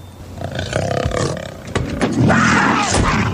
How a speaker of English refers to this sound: It's a cougar in the car. No, there's a cougar in the car. I put it in there. You got to learn to drive with the fear. And there ain't nothing more frightening than driving with a live cougar in the car.